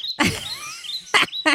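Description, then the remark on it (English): Recorded birdsong with a few sharp, bright chirps and a thin, sliding whistle between them. It is brief and moderately loud, with no voices. “I'll play the birds.”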